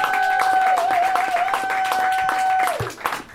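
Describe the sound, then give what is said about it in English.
A crowd claps steadily in a dense, sustained round of applause as three guests are brought out, with a held electronic tone ringing over it that slides down and cuts out just before the clapping thins. “Please continue that gracious and loving applause for Amy Miller, Guy Branum, and Steve Hernandez.”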